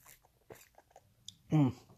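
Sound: sipping a cold drink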